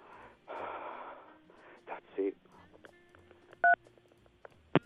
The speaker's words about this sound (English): He pressed the button, then put the phone down.